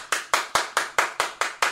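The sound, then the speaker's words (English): Hands clap in the background in a quick, even rhythm after a team has just scored: about eight crisp claps in under two seconds, clear, with no voices. “And the Hawks just scored, hence the clapping in the background.”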